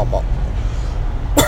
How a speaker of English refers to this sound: I'm sorry about the coughing, y'all. I'm really sorry about that.